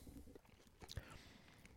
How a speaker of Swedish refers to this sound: Det är ju parmesanost, men det är ju ingen parmesanostmacka detta. Jag vet inte. Fan, jag måste ta en tugga till, vänta.